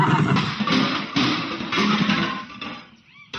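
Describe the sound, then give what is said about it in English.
A horse neighs loudly in a long, wavering whinny that rises and falls for several seconds, with no one talking over it. “Well, this is where we leave the horses and continue on foot.”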